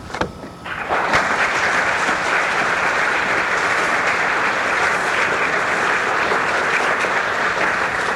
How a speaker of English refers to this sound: Thank you. Very warm applause here.